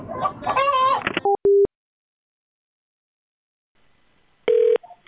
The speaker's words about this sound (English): There's a chicken up here.